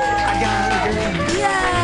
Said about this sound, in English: Keep it clapping!